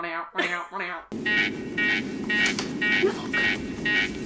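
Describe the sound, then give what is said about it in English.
A brief voice gives way to a spaceship alarm going off as everything on the ship goes dark, pulsing steadily about twice a second over a deep, continuous rumble, loud. “And I think that's when they're having that discussion that everything goes dark and some alarms go off.”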